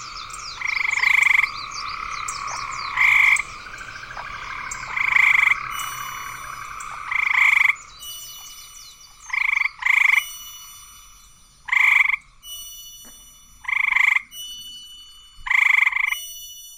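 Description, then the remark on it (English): Frogs croaking: one loud frog gives short rasping calls about every two seconds, while a dense chorus of higher chirping frogs fills the background. No one speaks. “Like drawing boundaries around one particular type of frog in this scene.”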